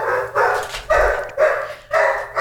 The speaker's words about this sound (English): Our dogs just got let in and are extremely loud. So we're going to pause and mute our microphone for a minute until they're quiet. So you guys don't hear a basset hound shrieking in the background.